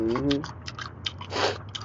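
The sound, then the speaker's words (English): A short voiced murmur opens, then a run of irregular, crackly chewing bursts follows as someone eats food from the kitchen refrigerator, with one louder, longer crunch toward the end. “In the goddamn refrigerator. Eating up all the food.”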